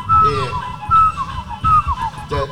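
An old school reggae instrumental tune, its melody carried by a clear whistle-like line that repeats a short descending phrase several times over a low, thumping rhythmic pulse.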